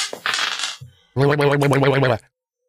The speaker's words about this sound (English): What's next, Joe? Come on, roll that dice.